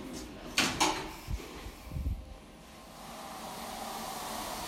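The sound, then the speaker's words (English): Lift doors slide shut with a brief clattering rattle and a few dull thumps as the lift goes up, then a low, steady mechanical hum settles in. Moderately loud, with no talking. “Going up. Doors closing.”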